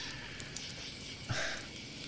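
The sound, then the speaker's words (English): A quiet outdoor campfire with a few sharp, scattered pops over a soft steady hiss, plus a brief breathy rush of flame partway through; no one speaks. “See, guys, I told you, I'm fucking outside here in this campfire. Sounds nice, doesn't it?”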